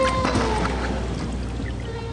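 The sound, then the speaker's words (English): Whale calls recorded in the 2000s: a thin, steady tone that slowly drifts lower in pitch, riding over a dense, continuous underwater rumble and hiss with no speech. “And here's what it sounded like in the 2000s.”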